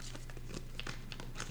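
Tarot cards being shuffled and then flipped: a quick run of papery riffles and soft slaps, fairly quiet, with a faint steady hum underneath and no talking.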